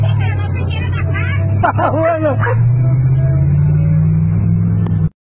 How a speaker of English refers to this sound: the dog's up there barking and scratching up the fucking top of the car